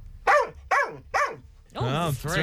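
A dog barks three times in quick, evenly spaced succession, loud, followed by a longer, drawn-out yowling vocalization.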